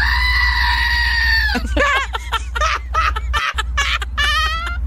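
A screaming goat desk toy lets out a loud, drawn-out, harmonic goat scream lasting over a second, followed by a rapid series of warbling, choppy bleats, all prominent with no talking.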